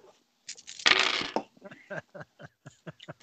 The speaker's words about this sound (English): Then I'll roll the dice.